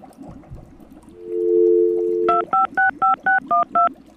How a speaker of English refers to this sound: I got on the phone lines now. Let me dial somebody up real quick.